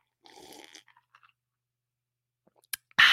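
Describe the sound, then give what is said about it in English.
Mouth sounds of someone taking a sip of pumpkin spice coffee (Harris Teeter brand), a soft slurp followed by small wet clicks and a swallow, then a sudden louder burst of noise at the end. “Hang on, I'm parched. I got to get a sip.”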